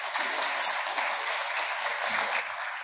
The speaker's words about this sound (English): We are so thankful to have you with us today, Ed. Let's please give Ed a round of applause as he comes up.